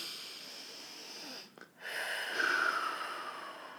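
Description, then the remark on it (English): A long, airy breath drawn in before a prayer, a brief pause, then a fuller, louder exhale with a soft rushing hiss. No one speaks. “Let's take a deep breath.”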